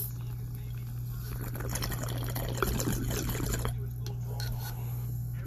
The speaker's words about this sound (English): Not bad to talk about UFO smoking on the UFO bong. I mean, water pipe. Smoking on a water pipe that's UFO friendly.